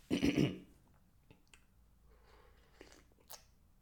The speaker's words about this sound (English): Quick sip of coffee. Coffee break, boss. Don't mind me, boss.